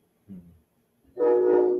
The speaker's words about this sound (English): I was trying to shut off my mic so the train wouldn't get you guys when it goes by.